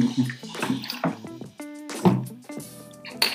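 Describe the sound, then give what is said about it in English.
Swallowing and sloshing of water as someone drinks from a container, several gulps in quick succession with faint liquid movement between them and no talking. “I was just having my water there.”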